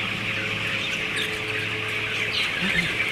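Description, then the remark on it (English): A large flock of broiler chickens about 16 days old, fed by Sutter Milling, chirps and clucks continuously inside a poultry house, a dense, steady chatter of many birds with a low mechanical hum underneath. “Now, these birds are, like I say, about 16 days old.”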